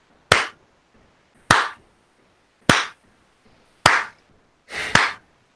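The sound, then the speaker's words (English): Muffled claps of gloved hands, five slow, evenly spaced claps about a second apart, the last one doubled. Each is a dull, fairly loud smack with a short tail, with no voices. “When you say that, you hear the muffled clap of gloved hands.”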